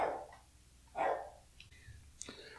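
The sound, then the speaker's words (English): A big dog barks twice, about a second apart, each bark loud, followed by a few faint higher whines or squeaks. “I'm going to pause and take care of this dog.”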